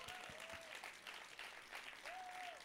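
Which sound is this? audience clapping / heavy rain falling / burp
audience clapping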